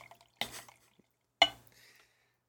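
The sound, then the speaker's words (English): Tequila barrel-aged sour beer being poured into a glass as two short, splashy gushes about a second apart, each trailing off into a soft fizzing trickle. No one speaks. “All right, I'm pouring it now. This is some ASMR here.”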